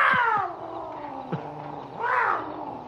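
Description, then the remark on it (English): A mountain lion's loud, wailing cry that slides downward, followed by a second rising-and-falling scream, with no talking. “One Man Mountain Lion”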